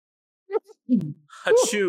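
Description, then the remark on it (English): A man sneezes loudly after a few short catching breaths, ending in a voiced, drawn-out exhale. “That was a manly sneeze.”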